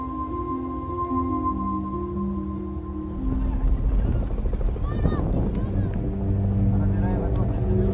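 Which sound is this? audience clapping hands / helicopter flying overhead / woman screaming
helicopter flying overhead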